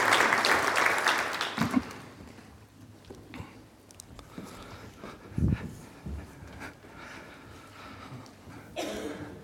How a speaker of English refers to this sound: I think the young people deserve a round of applause, friends. Thank you very much. Thank you.